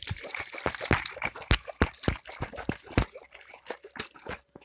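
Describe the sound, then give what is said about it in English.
Water sloshing and dripping during an ASMR session, a busy run of irregular wet pops and splashes that crowd together, then thin out near the end, with no one talking. “Next, I don't think that this make a sound, but this is water.”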